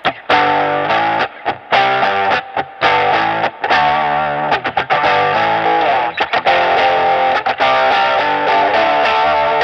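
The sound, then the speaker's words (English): A lo-fi, heavily distorted electric guitar with the mids boosted all the way and extra distortion added gives a honky, mid-heavy tone as it plays a choppy riff, chords stopping and starting in short bursts, loud with no talking. “Gas the mids all the way completely. Put a little bit of other distortion.”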